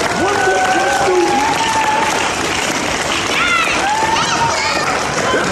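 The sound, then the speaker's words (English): Steady, loud applause from a crowd at a school fills the whole stretch, a dense wash of clapping with a few voices whooping and cheering over it, applauding Black Affinity Group and Penske Media Corp for sponsoring and donating books to the school. “So I need to give y'all to give them a round of applause for stepping up and sponsoring.”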